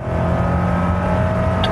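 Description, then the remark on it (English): A car engine roars loudly and steadily on a test track, a sustained, even drone with no speech, as a car accelerates hard in a demonstration. “If you find that your car is accelerating hard, even after you take your foot off the gas pedal, your first instinct is probably the right one.”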